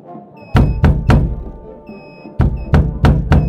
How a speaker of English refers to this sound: Knock-knock time.